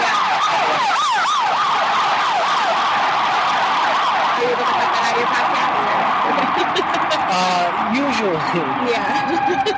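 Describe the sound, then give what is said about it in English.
An ambulance siren wails steadily with rising and falling sweeps, fairly loud, over a constant wash of street traffic noise. “I also have a disclaimer, you know, ambulance warning.”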